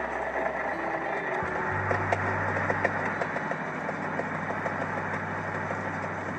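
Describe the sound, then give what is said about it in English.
A car engine idles with a steady, low rumbling hum, shifting to a slightly higher, more settled drone after a brief change early on, with no voices. “Well, I've got a car.”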